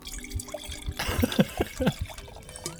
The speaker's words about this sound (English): There's no better noise in the world than that, other than maybe opening a can. Yeah, in terms of podcast ASMR, there truly is no better sound than you cracking a bottle of wine, pouring it into a glass